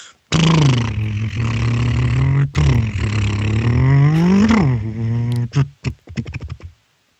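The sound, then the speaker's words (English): A voice imitates a revving car engine with a sustained, buzzing, throaty drone that rises in pitch near the end, followed by a few short sputtering bursts. Loud, with no words. “Let's see who can make the best car noise.”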